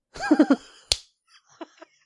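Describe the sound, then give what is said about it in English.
A voice makes three quick, bright chirping syllables, then a single sharp, loud smack cuts in, imitating a bird flying into a window. A few faint, soft noises trail after. “That's why they fly into windows and shit, because they're fucking idiots.”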